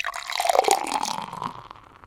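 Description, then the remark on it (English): Beer, an Extra Citra pale ale from Surly in Minnesota, pours steadily into a glass as a refill, a bubbly gurgling stream that swells and then gradually tapers off, with no talking. “Okay, we're back, and what did you just pour me?”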